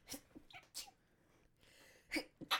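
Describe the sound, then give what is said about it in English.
A few small, sharp sneezes in quick succession, each a brief breathy burst with soft breaths between them, fairly quiet with no talking. “Bless you.”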